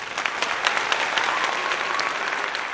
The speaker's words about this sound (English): Ooh, round of applause there. That's what we'll add in the edit.